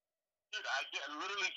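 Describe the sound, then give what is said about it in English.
A garbled, tinny voice comes through a phone line, its sound thin and broken up with brief dropouts, starting after a moment of silence and continuing at steady volume. “Dude, I literally can't hear you. Like, you're, it's so choppy.”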